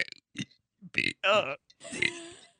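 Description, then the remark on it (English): A person burps the alphabet: a string of short, croaky burps in quick succession, each rough and guttural with voiced, speech-like shaping, as if forming letters; loud, ending in a longer drawn-out belch. “I could burp the alphabet.”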